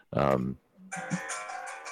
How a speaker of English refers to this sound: I apologize. that's my ringtone.